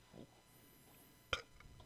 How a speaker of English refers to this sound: That was a weak burp.